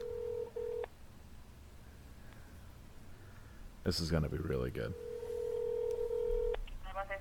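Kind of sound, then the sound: signal or alarm, telephone keypad dialing tones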